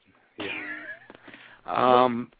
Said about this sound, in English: Come on, cat, go away.